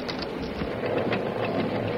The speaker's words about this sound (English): The roar of the flume's waterfall was almost deafening, but suddenly he detected another sound. A sound he could hardly believe. Why, here's a stamping mill, running wide open.